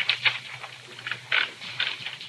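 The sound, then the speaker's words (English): Keys of an author's typewriter clacking in an uneven rhythm as a bill is typed out, with about eight or nine sharp, bright strikes spaced irregularly over a couple of seconds, alone and without talk, over a faint low hum. “So, sit down at the great author's typewriter and make it out.”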